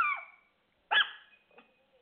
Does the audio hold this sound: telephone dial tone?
no